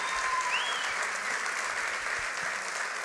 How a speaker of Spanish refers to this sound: ¿por qué no le da un aplauso a nuestro Dios? Celebra su bondad, celebra su fidelidad. Vamos, dele un aplauso grande porque Él se lo merece.